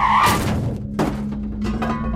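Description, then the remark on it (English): An oncoming truck with high beams brakes too late for a man jogging across the road: a brief high tire screech opens, then a heavy metallic thunk of something hard hitting metal lands about a second in, followed by a low steady engine rumble and faint clattering. “The tires screeched, but the brake was too late.”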